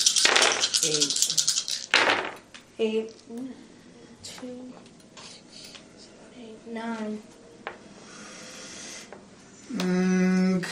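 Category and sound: household object, dice being rolled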